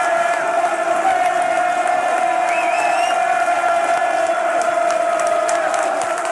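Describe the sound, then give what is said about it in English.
A big Millwall football stadium crowd roars steadily at half-time, with cheering, scattered whistles and clapping blending into one loud, continuous wall of noise as Lee Gregory and Steve Morrison are applauded off the pitch. “Lee Gregory, Steve Morrison getting applauded off the pitch there in front of us.”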